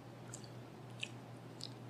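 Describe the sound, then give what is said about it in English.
Quiet wet mouth noises as whiskey is swished and chewed in a 'Kentucky Chew' tasting, with a few soft smacking clicks spread over two seconds against a faint low hum. No one speaks. “Let's do another Kentucky Chew.”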